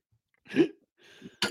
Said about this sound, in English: Oh, he coughed.